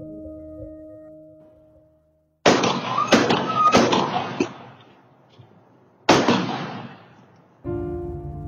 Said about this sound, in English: A warning, the following is actual audio caught by neighborhood surveillance cameras of the gunshots